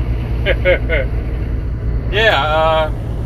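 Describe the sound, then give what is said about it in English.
A steady, loud low rumble of a truck engine and road noise fills the cab of a truck being driven, with a couple of brief voice sounds rising over it. “Alright, welcome back everybody to Anime on the Interstate, the premier podcast that talks about One Piece while driving a truck and very tired.”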